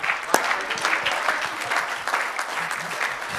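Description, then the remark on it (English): An audience claps their hands in praise to God, a dense, continuous burst of applause, many overlapping claps forming a steady crackling wash that holds at a fairly loud level for the whole few seconds. “You've got two palms on the end of your arms for a reason today, and that is so that we can clap our hands and shout unto the King of Kings and the Lord of Lords.”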